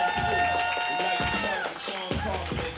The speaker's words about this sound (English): Everybody start clapping for my man